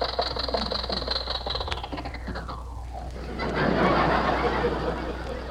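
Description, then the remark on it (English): A rattly old jalopy car engine runs steadily as the car stops at a red traffic light, its pitch sliding downward as it slows, then settling into a rougher, louder idle with clattering noise. “Well, you don't have to shut off the engine to stop.”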